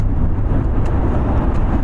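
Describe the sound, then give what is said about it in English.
Steady low rumble of a car on the move in the afternoon, engine drone and road noise blending into a constant, fairly loud wash with no speech over it. “he's our driver this afternoon. Yeah, so I'm responsible for three bastards on the car.”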